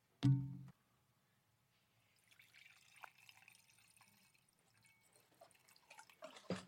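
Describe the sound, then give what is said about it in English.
A short knock or clunk, then a pause before alcohol is poured into a glass, a steady trickle with small splashes and drips that swells louder near the end. No one speaks. “On that, I'm going to pour some alcohol.”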